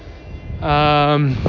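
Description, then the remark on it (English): A loud, steady motor whine rises out of low background noise, holds a buzzy, even pitch for under a second, then drops away as a man races a remote-control car at the side of a road. “The guy's actually has an RC car and he's racing it, which is cool as hell, because he's like, he looks like 50 and it's so cool.”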